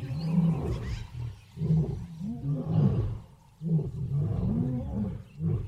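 A big cat roars in a series of deep, rumbling grunts, about five or six heavy bursts with short gaps between them, each swelling and falling in pitch. No one speaks.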